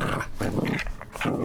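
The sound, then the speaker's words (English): A dog named Hot Dog, whose canine dialogue conversion kit collar has broken, growls and snarls in several harsh, rumbling bursts, with short gaps between them and no one speaking. “it would appear that the canine dialogue conversion kit collar has officially broken”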